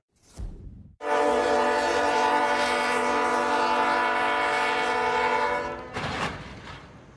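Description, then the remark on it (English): A loud train horn blares in one long sustained blast for about five seconds, then cuts off into a burst of harsh rumbling, clattering noise as the train clips a vehicle-hauling truck caught on the tracks at a crossing. “The train clipped the truck and a couple of vehicles, but it could have been a heck of a lot worse.”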